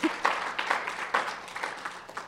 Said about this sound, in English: And I think at that time you could give some applause. My script says that.